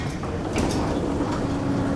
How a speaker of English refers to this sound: Doors opening.